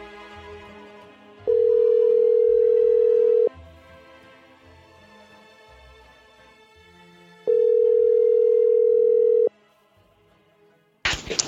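An outgoing phone call's ringback tone sounds twice, each a steady two-second electronic tone separated by a quiet gap, with a faint click and brief noise right at the end as the line connects.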